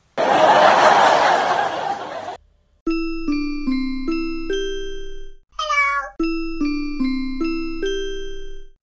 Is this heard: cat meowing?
yes